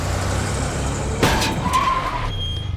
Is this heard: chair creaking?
no